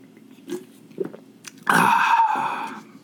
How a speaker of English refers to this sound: In fact, actually, I've got a Coke right next to me. I'm going to take a sip real fast.